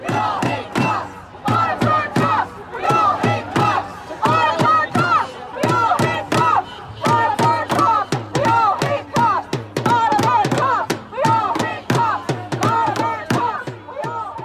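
A large crowd of Antifa protesters at a straight pride demonstration chants and screams loudly in a steady, rhythmic cadence about gay sex and hating police officers, voices shouting together in unison, punctuated by regular sharp percussive beats throughout.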